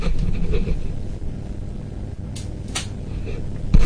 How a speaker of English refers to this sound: I left my door open. Hold on a second, so I don't disturb the rest of the house.